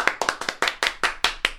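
Eight sharp hand claps in a quick, steady rhythm, about five per second, with no one talking. They sound like one person clapping rather than a crowd.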